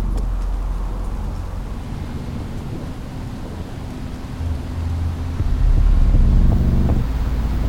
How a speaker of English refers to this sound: A car drives through the busy Miami nightlife.